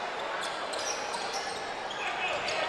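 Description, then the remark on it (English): A basketball bounces on a gym floor in a loose, irregular dribble as Dardar of the Lions advances it across midcourt with a crossover dribble in a game against the Bulldogs, the thumps sitting amid a steady wash of crowd noise and arena echo. “Dardar will advance the ball across midcourt for the Lions. Crossover dribble to the middle.”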